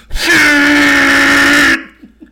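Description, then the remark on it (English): A voice imitates a bus horn with one long, loud, flat honk held for about a second and a half, then cuts off abruptly, leaving only faint breathy sounds. “and one bus like lets out a honk. And I don't know if you've ever heard a bus horn.”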